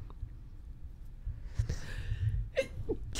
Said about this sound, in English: God bless you. I had to sneeze.